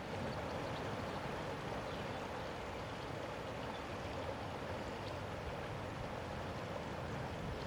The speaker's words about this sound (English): the trickling sound of the river in the background